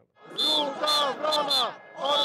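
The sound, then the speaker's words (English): A large rally crowd chants insults at Prime Minister Donald Tusk in unison, loud rhythmic bursts of massed voices rising and falling roughly every half second, with a dense roar between the chanted syllables. “At this rally, the crowd chanted insults at Donald Tusk and portrayed the Prime Minister as a traitor.”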